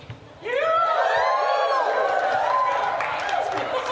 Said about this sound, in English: So if you cheer big, we finish early.